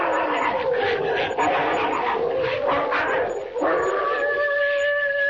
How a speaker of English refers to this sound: What's that? Oh, it's them dogs. They're fighting again. Lend a hand now, quick, before they chew each other to bits.